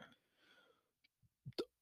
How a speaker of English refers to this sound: Oh, sorry, I had a burp.